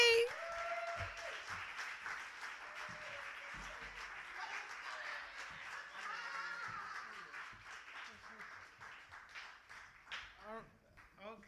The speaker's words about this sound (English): So would you all clap really, really, really loud for